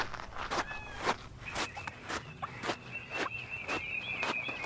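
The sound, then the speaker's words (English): Footsteps of people walking through a rainforest, a steady crunching stride of about ten even steps, with a faint thin high whine or chirp running underneath, and no talking. “Yo, we've been walking for hours, man.”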